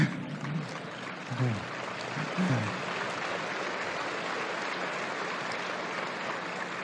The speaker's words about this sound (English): Give them a lot of applause, because they don't get much else for it.